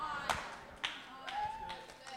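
A handful of scattered, irregular hand claps from an audience at Highlight church during a sermon ring out sharply over a faint background of murmuring voices, with no steady applause building up.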